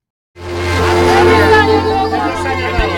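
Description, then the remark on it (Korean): A packed party crowd at New Year 2023 cheers and chatters all at once while hugging, watching the Times Square ball drop live on TV monitors as Auld Lang Syne plays. A loud, continuous wall of overlapping voices swells up after a brief silence and holds steady to the end. “TV 모니터를 통해 타임스퀘어에서 실시간으로 진행되는 볼드롭 실황을 지켜보던 참석자들은 올드링자인 음악이 흐르는 가운데 서로 포옹하면서 환호와 함께 감격적인 2023년의 아침을 맞았습니다.”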